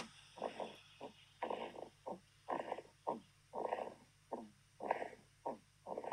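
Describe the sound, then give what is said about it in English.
Little snores held up to a microphone, in a quick, steady rhythm, about a dozen short raspy bursts with a creaky, croaking quality, each breath clearly separated by brief pauses. No one speaks. “There's a little snores. It sounds like she's a haunted woods.”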